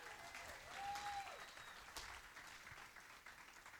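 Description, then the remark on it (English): A church crowd applauds the band steadily, a dense wash of many hands clapping at once that holds fairly even throughout, with a brief whistle rising and falling near the start. “Somebody give our next level band a big round of applause.”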